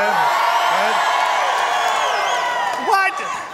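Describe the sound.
An audience in a room cheers and whoops loudly and steadily, asked to cheer loud about the upcoming ball game, many voices overlapping in a dense roar, with a few shouts rising above before the noise begins to fade at the end.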